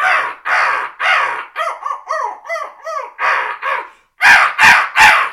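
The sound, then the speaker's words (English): A string of harsh crow caws, a few drawn-out ones then a quicker run of shorter caws, a brief pause, and three loud, sharp caws fired off in rapid succession, clear. “It's just hammer them, maybe even throw in some longer crow calls, and then at one tone, and then hit them real quick, 3 sharp.”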